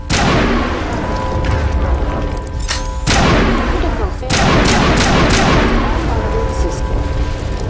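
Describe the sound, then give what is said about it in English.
Loud, rapid bursts of video game assault rifle fire crackle almost nonstop, breaking briefly twice, over a steady humming layer of game sound. “Why is my assault rifle not working?”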